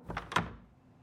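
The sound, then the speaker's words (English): A special performers' door behind a stage opens and shuts quickly, two short knocking clunks in close succession, the second louder, then a soft fading tail into quiet. “He managed to pull himself away from the crowd and linked his arm with mine, and we walked back behind the stage and out a special door that was only for performers.”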